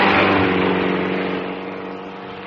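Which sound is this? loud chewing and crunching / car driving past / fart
car driving past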